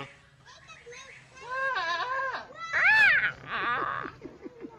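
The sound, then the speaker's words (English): A person imitates a goat, letting out several wavering, nasal bleats in quick succession, each rising and falling in pitch, loud with no other voices. “Let me hear your goat again.”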